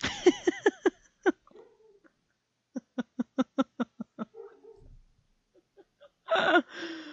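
A dog whimpers in two rhythmic bursts of short, high, whiny yelps, the second burst a steady run of evenly spaced cries, ending with a brief rough, breathy noise. No talking.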